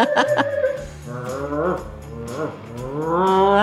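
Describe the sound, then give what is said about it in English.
Someone imitates a racing car with their voice while moving left and right off the microphone: a loud, continuous buzzing drone that swoops up and down in pitch several times over a few seconds, with no speech. “I'll do a racing car noise.”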